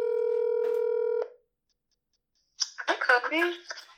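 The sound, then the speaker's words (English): A steady, buzzy telephone dialing tone sounds for just over a second as a phone call is placed, stops abruptly, and after a short silence a voice starts talking. “First and foremost, I hope she answered the phone for me.”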